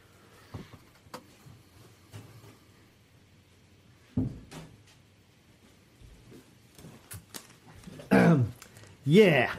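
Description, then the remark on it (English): A door thuds shut indoors, one solid knock partway through, surrounded by quiet shuffling and handling noises, then louder muffled, voice-like sounds toward the end. “I have to shut the door.”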